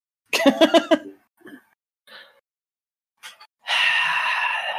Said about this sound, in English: sneezes.